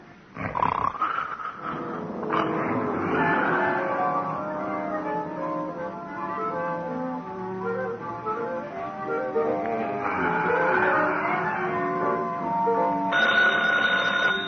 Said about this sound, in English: Yeah? Oh, phone,